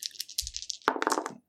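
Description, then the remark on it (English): A quick clatter of several dice being re-rolled onto a table during a tabletop game, a rapid burst of clicks that settles after about a second, fairly loud. “And then I re-roll these ones because they sucked.”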